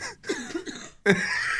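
A short burst of harsh, breathy coughing from a person who is ill and has lost their voice, a few rough bursts followed by a louder, sustained raspy hack that fills the end of the moment.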